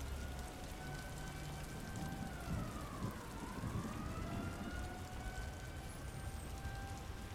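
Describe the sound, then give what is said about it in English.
Steady, heavy rain at night hisses without pause, a dense wash of drops, while a faint siren wails, its pitch sagging and rising once. “I made the meeting with minutes to spare, soaked through from the relentless rain, avoiding the street rats and thieves.”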